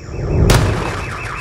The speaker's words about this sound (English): Car alarms shrieked in protest, and birds from the surrounding trees and rooftops were abruptly jolted from their peaceful rest.